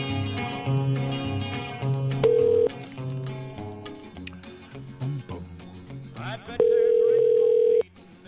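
A phone line dials and rings, with a brief steady ringback tone followed later by a longer one, both fairly loud over a busy music bed, as a call is placed on the Ham Radio Show.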